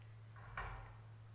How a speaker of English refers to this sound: It sounds like that was a knock and that my king is ready to see me now.